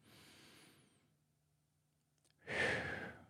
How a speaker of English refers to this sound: Some of the basic tools here are things like breathing. If you are starting to feel yourself get revved up, just to consciously take a deep breath.